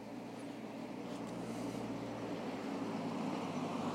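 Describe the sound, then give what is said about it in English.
A car rumbles by, a steady low engine drone with a broad wash of road noise that holds at an even level throughout, with no voices. “That was a car.”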